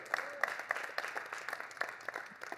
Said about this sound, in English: That's not going to get too many claps. All right, I'm grateful for those claps in this room.